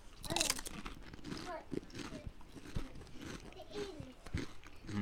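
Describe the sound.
Loud crunching as someone bites into a crisp, very hot Paqui Haunted Ghost Pepper chip and chews, with irregular sharp crackles spread over several seconds and faint murmuring voices underneath.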